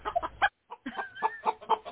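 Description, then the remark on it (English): A Norristown chicken clucks in a quick run of short, agitated calls while trying to peck a person's eyes, pauses briefly, then resumes with a steady series of clucks, fairly loud with no one talking. “sicked her fucking Norristown chicken on me.”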